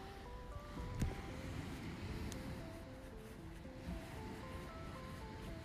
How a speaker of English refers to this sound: I don't know if you can hear it. The waves crashing on the ground and everything.